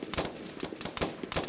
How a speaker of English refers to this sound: Moments later, the firing squad unleashed a torrent of gunfire. The blasts echoed through the mountains.